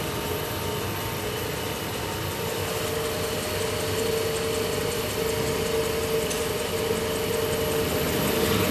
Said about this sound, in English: As well as that, there's a lot of the brass in the wheels that are badly tarnished, so I have to polish it up. So he's turning the wheel on the lathe and burnishing it with a tungsten burnisher, so he's polishing up the wheel.